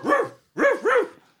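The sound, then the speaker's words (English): A dog barks three times in quick succession, loud, with a short pause after the first bark and the last two running together. No one speaks. “Get that dog out of there. We're not taking that dog.”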